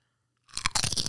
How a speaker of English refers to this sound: Ooh, that was a good crunch. I could hear that in the headphones.